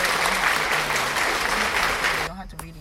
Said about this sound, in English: Let's give him an applause for that.